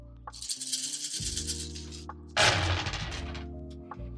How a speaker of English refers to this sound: All right, I'm going to roll the pilot dice.